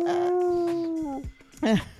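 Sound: person imitating whale noises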